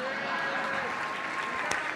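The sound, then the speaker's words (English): An audience claps for attendees standing because they had email in 1999: a steady two-second, dense, even wash of many hands with no single claps standing out, ending in a couple of slightly sharper hits. “Okay, first, let's clap it up for these dinosaurs.”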